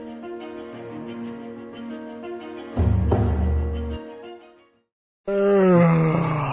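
A long, loud yawn, groaning and drawn out, breaks off into a brief silence before a second, shorter yawning moan slides downward in pitch.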